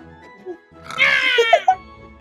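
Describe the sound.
A person imitates an angry cat meow: one strained, raspy, harmonic-rich cry of just under a second, sliding and wavering at a fairly high pitch, ending in a couple of short yowling bursts.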